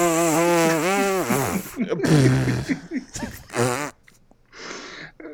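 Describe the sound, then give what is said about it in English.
Two voices make loud, buzzing, wavering raspberry noises in imitation of an elephant's fart, overlapping and trading off in sputtering bursts with brief gaps, then ending in a short breathy blast. “That was our impersonation of an elephant fart duet.”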